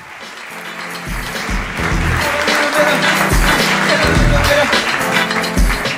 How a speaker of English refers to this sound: No, keep, please. Keep clapping, thanks.